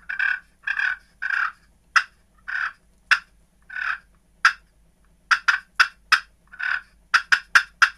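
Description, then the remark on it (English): A turkey call imitates a hen, alternating short rolling purrs with sharp, clipped clucks, clear with no talking, ending in a quick run of four clucks. “They'll purr, cluck, purr, cluck. Find something they like. They cluck, cluck, purr.”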